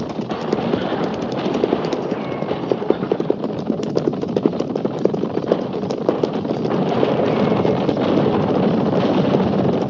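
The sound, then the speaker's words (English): Horses of a cavalry troop gallop hard near the Oregon Trail, a dense, rapid drumming of many hooves pounding together in a steady, loud rush that swells slightly toward the end, with no voices. “At the gallop!”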